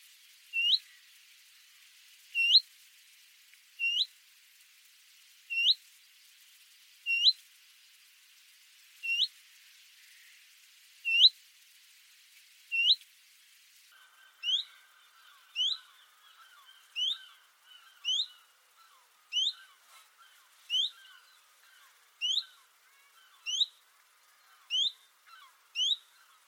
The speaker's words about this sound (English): Now, willow warbler and chiff-chaff sound pretty similar, but there are differences that are pretty consistent between the two. So first I'm going to play you some willow warbler calls, and then I'm going to play you some chiff-chaff calls.